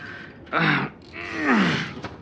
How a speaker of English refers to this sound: Professor, did you wake me? You were snoring. You've been snoring.